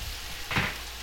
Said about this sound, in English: Are you just like frying up my cake? This is becoming like a, what do they call them, griddle cakes?